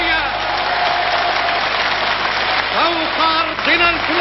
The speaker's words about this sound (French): Tonnerre d'applaudissements, l'émotion est à son comble.